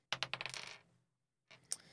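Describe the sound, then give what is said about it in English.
Dice rattle and tumble across a table during a tabletop role-playing game attack roll, in a quick burst of sharp clicks that fade out, then after a pause a second, shorter clatter follows; the roll comes up 18, a hit. No one speaks. “Sorry, I misread the roll.”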